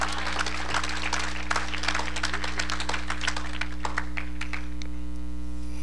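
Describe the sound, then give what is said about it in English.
A crowd claps in dense, scattered bursts that thin out toward the end, over a steady low electrical hum with no voices. “Yes, if you're going to clap, just clap.”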